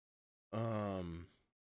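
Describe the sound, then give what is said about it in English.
A single voiced yawn, about a second long, with a steady open-mouthed tone that slowly drops in pitch and trails off into a breathy exhale, followed by silence. “Maybe I'm not breathing while I'm talking because I'm yawning for some reason because I'm not tired.”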